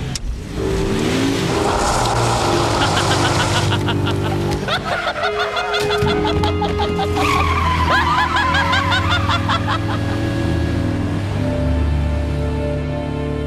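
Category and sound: vehicle, car engine running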